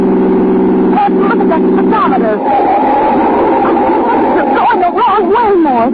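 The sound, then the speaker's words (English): A car engine drones steadily at a constant pitch as the car is driven past the city limit, loudest in the first couple of seconds, then continues underneath as voices talk over it. “Mort, stop this car.”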